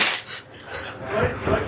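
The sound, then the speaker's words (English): Small dice clatter and rattle across a hard tabletop, a quick run of bright clicks and knocks lasting under two seconds. “I love that you've already branded one of the dice a traitor.”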